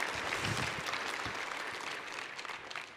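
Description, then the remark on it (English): An audience claps steadily, a dense wash of many hands at moderate loudness that holds for about three seconds before easing slightly, with no voices over it. “Give him a round of applause for me.”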